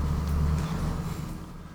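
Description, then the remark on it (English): A car passes by with a steady, heavy low rumble that gradually eases off over a couple of seconds. No one speaks. “Sound of a car going by.”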